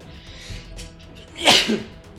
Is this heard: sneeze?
yes